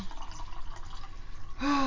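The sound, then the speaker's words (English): A fizzy drink is poured, a steady crackling hiss of bubbles, then a rising gurgling tone near the end as the glass fills. “You guys hear that fizz?”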